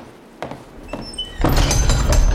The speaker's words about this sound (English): What was that? Nothing. Just the massive castle door closing with a sickening finality making you a virtual prisoner for what will be a nightmarish few days for you.